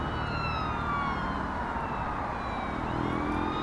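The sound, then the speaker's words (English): Distant emergency sirens wail in steady, gliding tones over a constant bed of traffic noise from cars and SUVs stuck in a jam on Holloway Road, continuous and moderately faint throughout, with no voices. “There were sirens in the distance, and there was a helicopter circling above.”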